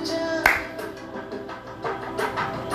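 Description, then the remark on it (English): Hands clap during a guided exercise of breathing, clapping and smiling: one sharp, loud clap, then several softer, irregularly spaced claps over a steady low background hum, with no talking. “Breathe and clap and smile.”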